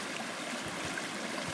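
A small river flows steadily, its continuous rushing and babbling water filling the scene at a moderate, even level with no voices present.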